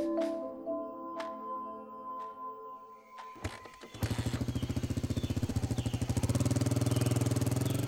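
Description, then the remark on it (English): A rented motorcycle idles with a few sharp clicks, then kicks into a loud, steadily pulsing roar as it gets moving down a dirt road in the plains of southern Colombia and keeps running. No one speaks. “entered the plains of southern Colombia on the back of rented motorcycles.”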